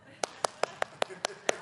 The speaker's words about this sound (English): Look, people are clapping.